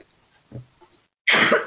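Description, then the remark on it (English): A single loud, harsh cough bursts out after a moment of quiet, preceded by a few faint low murmurs or breaths. “Sorry, coughing.”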